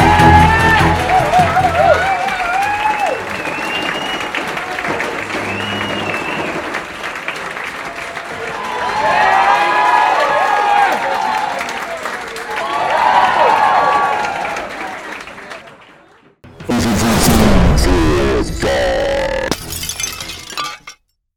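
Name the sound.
crowd applause and cheering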